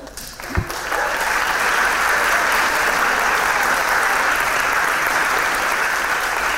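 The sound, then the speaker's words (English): An audience breaks into steady, sustained applause after a brief start as the winner of a student circular-economy competition, the Scottish Kelp project, is announced; many hands clap in a dense, even wash of sound that holds at a constant loud level for several seconds. “We're getting in there early with the applause.”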